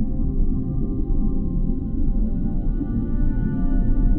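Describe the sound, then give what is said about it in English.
A deep, rumbling blue whale song drones steadily throughout, low and resonant with faint sustained harmonic tones above it, heard alone with no voices. “Let the slow dance of the magic whale enchant you with her soothing rhythm.”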